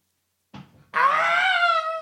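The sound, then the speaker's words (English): A voice imitates the Wilhelm scream: a brief breathy rasp, then a loud, strained, sustained cry that starts high and slowly sinks in pitch, with no talking around it. “Give us a try of the Wilhelm scream.”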